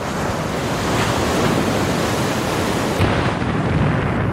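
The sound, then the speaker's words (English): Rough sea waves pound hard against a sailing boat in a continuous loud roar, with gusting wind rushing across them. No voices, just the steady churning wash of turbulent water and wind throughout. “Waves pounded the vessel hard, taking the boat on a roller coaster of a ride.”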